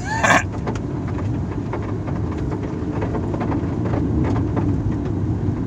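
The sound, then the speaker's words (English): A car roars past, its loud engine rumble filling the whole stretch, with a brief high-pitched squeal near the start. No one speaks. “Alright, somebody else just screamed across here.”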